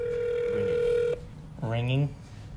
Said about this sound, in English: Pete, the phone is ringing.